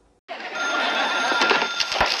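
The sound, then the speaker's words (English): An old-style telephone bell rings loudly and continuously, a harsh metallic rattle that starts abruptly and holds steady with a few clicks mixed in. No one speaks. “In the midst of all this, the phone rings.”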